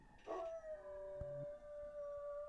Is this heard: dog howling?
yes